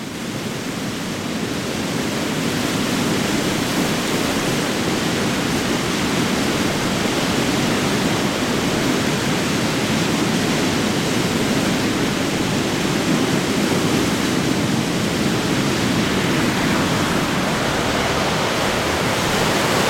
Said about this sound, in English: On February 20th, 2017, the National Weather Service issued a flash flood warning for the Alameda Creek near Niles and Vallejo Mill.